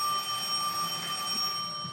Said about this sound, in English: Uh-oh. Now they're calling the bar phone. Sounds important. No. I doubt she knows I'm here. So It's probably a salesman. We'll just have to let it ring out. Do you get... You want me to answer just so it stops ringing?